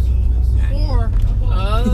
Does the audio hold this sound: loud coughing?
no